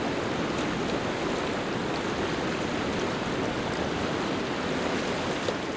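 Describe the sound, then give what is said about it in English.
The Eystri Rangá river in Iceland flows steadily with a continuous, full rushing wash of water, fairly loud, holding an even level throughout with no voices. “was the site of an iconic battle by the edge of the river Eystri Rangá nearly 1,000 years ago. Insert sound.”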